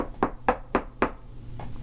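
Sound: knocking on a door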